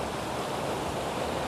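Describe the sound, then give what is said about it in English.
A steady, dense roar of rushing water from a raging river fills the whole moment without pause or change, loud, with no voices. “If that's what you need today, then focus on the raging river. Focus on the sound, just almost scrubbing your skin clean.”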